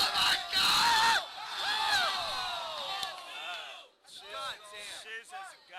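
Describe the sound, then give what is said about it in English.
A crowd at a competitive video game match erupts in loud, excited cheering and yelling, many voices overlapping with whoops and rising shouts, surging for a few seconds before dipping and swelling again. “You can hear the community, like, cheering, like, this is a fight.”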